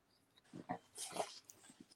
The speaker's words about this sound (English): Sorry, little dog just came in here.